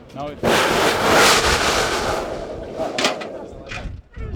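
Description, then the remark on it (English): A sudden loud roaring burst of steam and water from a hole in the ground, as park staff pour very hot water into it to demonstrate a volcanic eruption for about 50 tourists, holds a rushing, hissing blast for about three seconds before cutting off, with brief voices at the start and end. “staff is about to show a crowd of about 50 tourists a demonstration of a volcanic eruption.”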